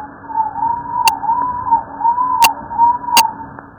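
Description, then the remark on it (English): Rat ultrasonic chirps in the 50 to 90 kilohertz range, strongly frequency modulated, slowed into a continuous wavering whistle that rises and dips in repeated arcs, punctuated by a few sharp, loud clicks; no one speaks. “Whereas the 50 to 70 to 90 kilohertz, these are very frequency modulated, and so these are very nice chirps, actually.”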